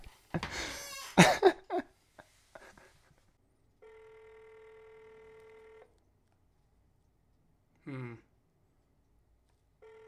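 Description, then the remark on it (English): A phone call to the speaker's mother being placed: a few quick clicks and blips, then a single steady ringing tone lasting about two seconds, a pause, and a brief electronic chirp. “Yeah, let's get my mom on the phone.”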